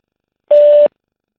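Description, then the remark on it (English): A single answering machine beep: one steady, mid-pitched electronic tone lasting about a third of a second, loud and clean, with silence before and after. “I think there's got to be a beep.”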